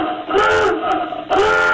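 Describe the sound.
A voice mimics a phone emergency alert, holding a loud, buzzy wailing tone that wavers up and down in pitch, with a brief dip before it swells again.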